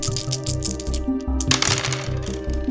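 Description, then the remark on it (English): Dice clatter and tumble across a hard surface in a quick burst of small clicks and rattles, with a steady musical tone running underneath. “Okay, roll the dice, please.”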